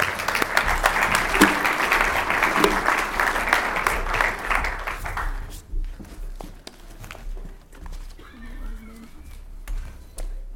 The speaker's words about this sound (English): So let's give them a warm round of applause.